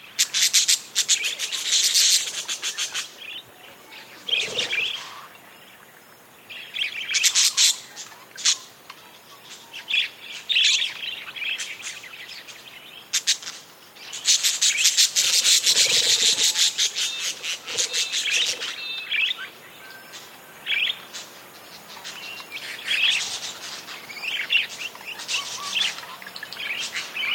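A large flock of wild budgerigars (parakeets) chatters continuously at dawn in the McDonnell Ranges, Central Australia, recorded by Andrew Skiok; dense overlapping chirps and warbles rising and falling in bursts, loud with no voices.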